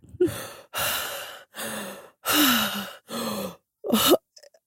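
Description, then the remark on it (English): Six heavy, breathy exhales in a steady sequence as a person takes deep breaths while stretching, each a loud sigh with a low voiced groan running through it, followed by a few faint clicks. “That's deep breaths and life stretches.”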